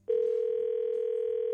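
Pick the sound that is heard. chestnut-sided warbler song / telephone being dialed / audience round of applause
telephone being dialed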